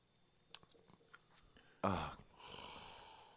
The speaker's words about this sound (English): Is that a snore? That's what I thought.